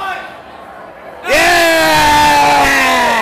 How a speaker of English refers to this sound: Those boos from the Mexican crowd.